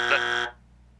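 A single loud, harsh buzzer blast lasting about half a second, with a dense band of bright, rasping overtones, then cutting off abruptly into a low residual hum.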